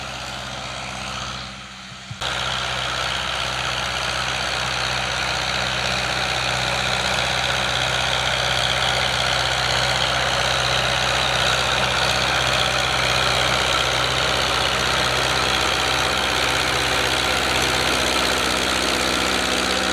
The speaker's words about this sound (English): So a lot of people here in Georgia actually do this process. So stay tuned. We'll show you some more tractor work as we spread it, cover it, and everything else.